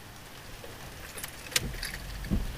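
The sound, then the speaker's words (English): Rain patters on the roof of a parked car, a steady soft hiss broken by a few sharp metallic taps and clinks, with a low rumble underneath and no voices. “And here we are, sitting in the rain, watching the world go by.”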